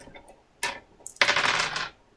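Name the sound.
two dice being rolled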